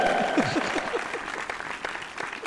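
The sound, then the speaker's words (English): An audience claps in a dense, steady burst throughout, the many overlapping hand claps blending into a continuous rattle, with a few brief swooping voice cries near the start. “Please don't clap. Please refrain from clapping until all the”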